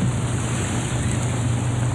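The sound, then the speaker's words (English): Rough sea surf churns continuously with gusting wind roaring over it during a storm, heard aboard a boat, a dense, steady wash of water and wind noise filling the whole scene. “Storm's easing up, boys, so we just look for the lights on the shore to guide us in.”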